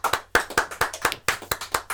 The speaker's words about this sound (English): I hope you're clapping in your car.